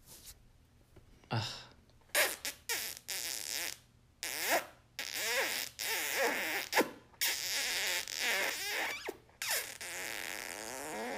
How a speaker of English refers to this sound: That was disgusting. She farted so much just then.